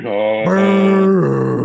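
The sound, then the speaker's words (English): A voice imitates a big foghorn with one loud, sustained low honk of under two seconds, stepping up in pitch partway through and dropping slightly at the end, with no words. “Well, what if it was just a big foghorn?”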